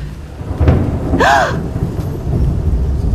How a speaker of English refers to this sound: The thunder was just thunder. There was nothing magic about it anymore.